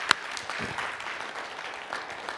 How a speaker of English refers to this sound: And so I just think we need to give the Lord a round of applause for his provision that way.